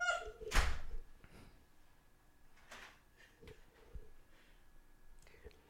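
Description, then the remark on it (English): A heavy door thud lands near the start as someone walks out the door, followed by a few softer knocks and clicks as things settle, with no one talking. “He's walking out of the door.”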